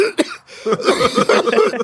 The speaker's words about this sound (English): As always, ends on the cough, the COVID cough.